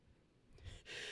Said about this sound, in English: I just sneezed. Sorry. Right on. God damn it, dude. I'm so sorry. That was right on you, dude.